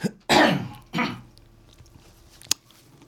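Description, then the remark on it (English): Two loud coughs in quick succession, the first longer and rougher, followed by quiet breathy noise and a short sharp click near the end. “I'm going to cough real quick, so hold on.”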